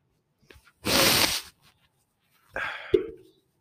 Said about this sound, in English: My fault, y'all. I gotta blow my nose. I'm sick as hell. One sec, y'all. One sec.